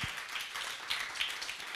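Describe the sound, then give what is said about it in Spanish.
A church audience applauds, many hands clapping together in a dense, steady patter that stays fairly soft and even for the whole moment, with no voices over it. “Usted puede andar, vamos, denle un fuerte aplauso.”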